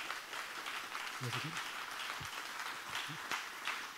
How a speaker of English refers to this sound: Awesome. Well, can we give a round of applause for these guys?